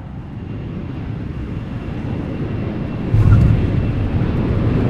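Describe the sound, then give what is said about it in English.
A steady, deep airplane rumble roars, then a sudden thump partway through as the wheels touch down, followed by louder rolling engine noise. No voices. “And we got Plane Landing.”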